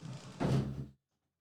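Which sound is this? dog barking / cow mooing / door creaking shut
door creaking shut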